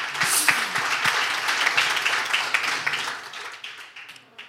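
A crowd applauds with dense, crackling clapping that stays steady and loud before gradually thinning out and fading near the end.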